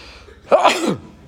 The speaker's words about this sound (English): Mashmid, Hashem is found in a sneeze. A sneeze is a dangerous moment. Even in science, medicine sees a sneeze, your internal organs could explode when you sneeze.